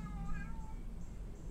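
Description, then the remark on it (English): Romeo, an outdoor cat, gives a single drawn-out meow, clear, with a bright harmonic tone that rises slightly and then trails off over a low, steady background rumble. “Romeo the cat is here.”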